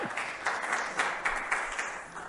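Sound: audience applauding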